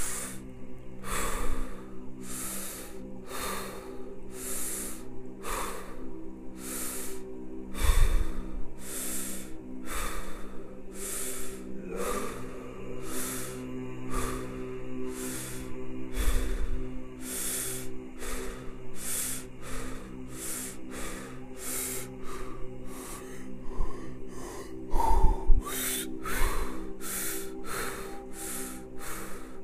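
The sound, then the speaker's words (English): Deep, rhythmic breathing during the last set of a breathing exercise repeats steadily for the whole stretch, forceful inhales and exhales alternating at a quick regular pace, fairly loud over a low steady hum, with no talking. “Exhale. Inhale. Last set.”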